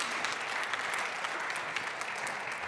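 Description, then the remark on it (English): A large group claps steadily in a church, many hands blending into a dense, sustained wash of applause at an even level throughout, with no voices standing out. “If you're ever hesitant to clap in church, just think of it as praying rapidly.”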